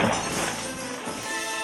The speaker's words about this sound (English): I stood there for a full minute, but no one came out, so I put my foot through the glass panel below the cash register.